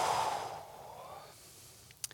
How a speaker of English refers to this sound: Let's just take a deep breath. Take a deep breath all the way in, and then exhale.